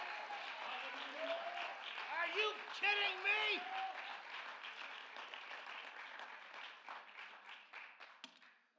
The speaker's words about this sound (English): On your feet now. Applaud God.